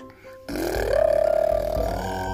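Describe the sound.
A child's voice imitates a race car engine: a buzzy, raspy vroom that rises in pitch, then holds a steady, throbbing hum for about two seconds before tapering off.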